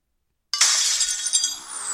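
After a moment of silence, a glass bottle is suddenly knocked, giving a loud, bright clinking clatter that rings on for over a second. No one speaks.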